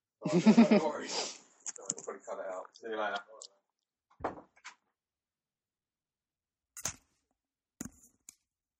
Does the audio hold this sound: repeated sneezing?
no